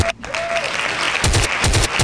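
A short run of loud hand claps in quick, uneven pairs breaks in after a second of steady background hiss, with no voices over them.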